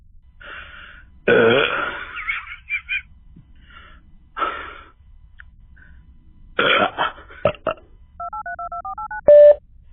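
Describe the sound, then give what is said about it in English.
Telephone beeps from a voicemail: a quick run of about seven short, even dual-tone keypad beeps, then one louder, longer tone, following a few coughs, gasps and throaty noises. “That's right, it just beeps.”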